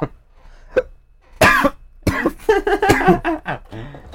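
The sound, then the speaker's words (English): A harsh coughing fit: a short cough, then a burst of several rough, wheezing coughs and throat-clearing sounds in quick succession, tapering off into a raspy gasp. “It can't with his coughing spurts, this one.”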